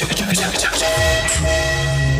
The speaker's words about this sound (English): Choo-choo. Choo-choo. All aboard. All aboard now.